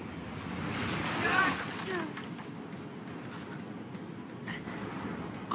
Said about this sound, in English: The waves are getting steep. Furl the sail.